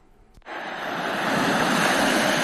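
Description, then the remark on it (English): Steady ocean surf rushes in after a brief quiet moment, a broad continuous wash of waves that swells slightly louder, with no voices; waves at a beach at night under the stars, at low tide, while fishing. “Side the ocean, which you can hear.”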